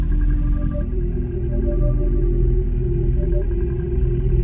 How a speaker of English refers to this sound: Last episode it was a truck. This time it's a car. What's next? A bus?